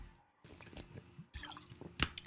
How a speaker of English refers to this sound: Oh, take a sip of that beautiful water.